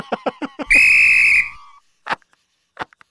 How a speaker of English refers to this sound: My grandfather gave me this whistle to blow at you if ever I met you.